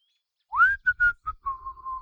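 A person whistles clear: an upward sliding note, a few short quick notes, then one long steady tone, with no talking.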